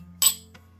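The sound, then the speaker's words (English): A bright, crisp clink of two glasses touching in a toast during a tasting, with a short ringing tail and a faint second tap afterward over a low steady hum. “Cheers.”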